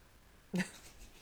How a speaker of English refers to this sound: Oh, look who's burping to the side. Oh my God, I hate myself right now. I literally just had to burp.